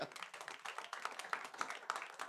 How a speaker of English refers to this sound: Clap for the Lord Jesus.